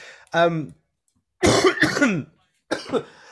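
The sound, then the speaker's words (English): A person with COVID has a coughing fit: a throaty, voiced hack followed after a short pause by a rough cluster of harsh coughs, then one more burst. “excuse me whilst I have a coughing fit.”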